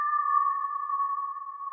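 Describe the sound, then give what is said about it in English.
A steady, whistle-like tone from a Casio 101 synthesizer holds one clear mid-high pitch with a faint overtone, sustained evenly at moderate volume with no voices. “The whistling sound is the Casio 101 or something, synthesizer.”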